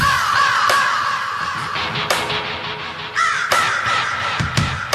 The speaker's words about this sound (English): Raven. It is Raven, yes.